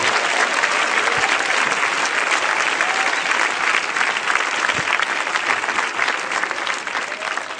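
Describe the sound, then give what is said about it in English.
A large crowd claps steadily and loudly in sustained applause, giving the Lord a hand clap of praise: a dense wash of overlapping hand claps that holds for several seconds with no speech. “Now give the Lord a good hand clap of praise.”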